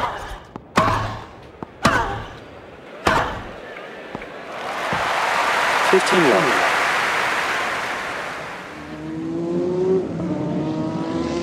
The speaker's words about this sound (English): I was doing American car racing, they call it NASCAR, and this particular race was a half-mile oval and essentially what would be considered a football-type stadium with very high banking. The cars put out 140 decibels of sound, maybe more,